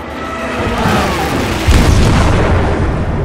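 A kamikaze plane crashes between the smokestacks of the warship USS Bush and erupts into a fireball: a loud, deep explosion bursts in around the midpoint, a heavy boom rolling over a dense roar of noise that sustains and rumbles on afterward, powerful, with no voices.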